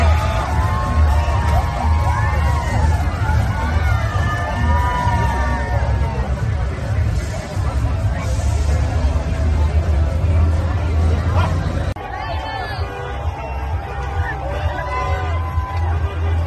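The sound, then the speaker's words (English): A dense outdoor crowd at the West Hollywood street parade murmurs and cheers continuously as a leather community group from Los Angeles marches with a truck, with scattered shouts and whoops rising above the babble; the noise dips slightly partway through, then carries on at a steady level. “some kind of leather community from Los Angeles that's marching in the parade.”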